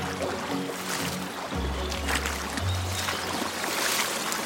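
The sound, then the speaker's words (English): Water flows steadily through a beaver dam built of sticks, a continuous rushing trickle with a low rumble underneath, holding an even, moderate loudness throughout with no voices. “Yeah, it's definitely getting louder, isn't it? That water.”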